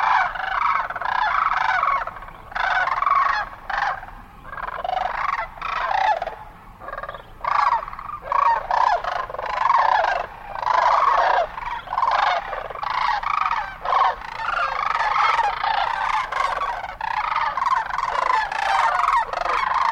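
A flock of sandhill cranes, stopped to feed along the banks of the Platte River near Holdrege, Nebraska, calls continuously, many overlapping rolling, trumpeting voices forming a dense, steady chorus with no pauses and no speech.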